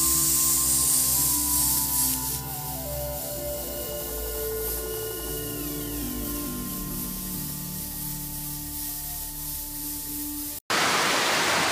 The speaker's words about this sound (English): This is what rain sounds like on a tin roof. It's mesmerizing. It's hypnotizing. It gives me great peace. It also makes me very sleepy.